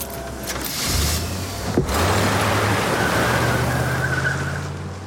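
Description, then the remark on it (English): A car engine revs and pulls off as a stolen car is driven away from a junkyard, a steady low rumble with a brief tire screech, staying fairly loud throughout with no voices. “And then just steals his car from him.”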